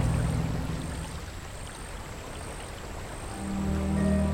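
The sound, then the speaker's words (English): Steady rippling, splashing water fills the scene as a boat drifts downstream at night, while a low boat motor hums underneath, fading slightly midway and then swelling louder again toward the end. “Suddenly, the low sound of the motor joined the ripple of water, and the living world disappeared into the night.”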